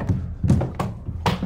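A body tumbling down stairs: four heavy, irregular thuds and thumps in quick succession, each a dull low impact with a brief sharper knock, and no voices.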